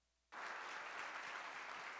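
Applause from a crowd bursts in after a brief silence and continues steadily, a dense, even wash of clapping that holds at a constant loudness throughout.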